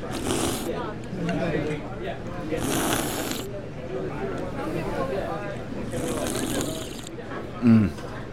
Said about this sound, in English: So I'm not going to be rude, but in Japan, to slurp means you appreciate the ramen.